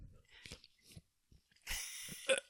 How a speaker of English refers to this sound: You're chewing on it like it's gonna break down. It's not. It's a plastic bag.